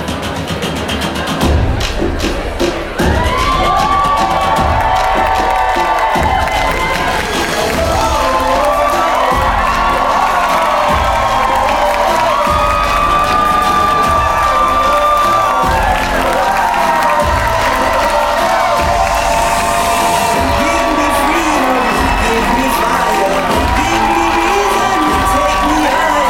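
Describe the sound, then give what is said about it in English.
A large live-show audience at the Bell House in Brooklyn, New York, cheers and whoops continuously, with high shouts and wavering cries rising over a dense, steady roar of crowd noise and scattered clapping, loud throughout. “So sit back, relax, and join us at the Bell House in Brooklyn, New York.”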